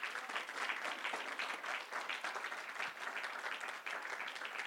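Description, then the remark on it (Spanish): A church audience applauding the Lord during a sermon, steadily, a dense wash of many hands clapping at once with no pauses, holding a fairly even loudness throughout. “Denle un buen aplauso al Señor.”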